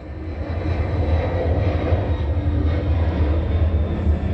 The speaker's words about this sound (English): This is a third plane. It's 6:10 a.m. This is less than 60 seconds.